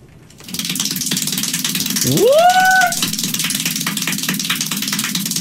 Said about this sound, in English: I'll play you the audio of him clapping, and then I'll tell you how many claps he's doing. You ready?